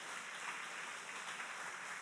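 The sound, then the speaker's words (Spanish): A crowd claps steadily together in applause for God, a dense, continuous patter of many hands that holds at an even level throughout, with no voices rising above it. “Can you give God a strong round of applause?”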